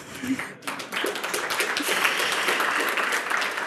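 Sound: audience applause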